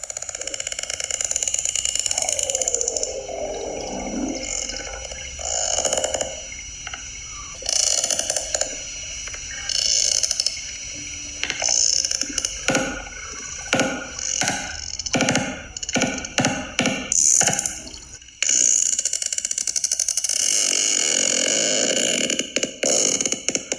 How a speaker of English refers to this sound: The language, the clicking they're making. As a matter of fact, what I'd like to do is have Alexis, could you play us a sound cue of a sperm whale communicating?